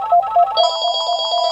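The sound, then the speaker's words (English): An old-style analog landline telephone rings loudly, starting with a couple of short tones that break into a rapid, continuous warbling trill. No one speaks. “Oh, I forgot to take the phone off the hook.”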